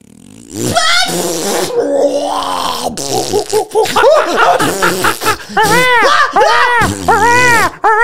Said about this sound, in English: And this fart, it's everything you could imagine. So it just starts out friendly. Yeah. And then it's like.